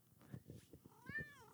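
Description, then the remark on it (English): A cat meows insistently, a short rising-and-falling cry near the end, with scuffling and low thumping sounds beneath it. “why wouldn't my cat be going crazy right now, right when I'm in the middle of this podcast?”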